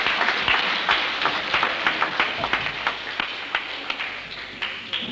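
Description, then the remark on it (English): An audience applauds steadily for several seconds, a dense wash of many hands clapping with sharper individual claps standing out, for a woman from Bristol, originally from Yugoslavia, called up to the front. “Tell me, give her a clap.”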